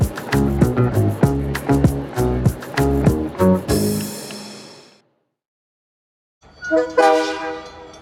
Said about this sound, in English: As the train rolls off from Toronto to Ottawa